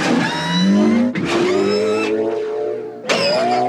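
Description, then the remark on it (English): A speeder bike engine whines and climbs in pitch, breaking twice with abrupt gear shifts before rising again. It is loud and continuous, with no voices. “My personal favorite, speeder bike changing gears.”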